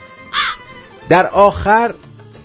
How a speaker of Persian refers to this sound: یه چشم انتظاری برای رسیدن کلاغ بی‌نوا به لونه‌اش.